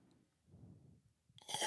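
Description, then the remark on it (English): Someone slurps a sip of water: a loud, hissing slurp bursts in at the end after a second or so of soft, low mouth rumbling. No one speaks. “I'll go to take a sip and I'll slurp. I'll go like this.”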